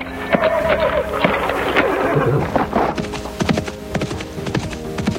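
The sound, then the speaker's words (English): A horse whinnies loudly for a couple of seconds, followed by the rapid clip-clop of hooves moving across hard ground. “The other two poised their blades to cut across her torso as their horses tried to sidestep closer.”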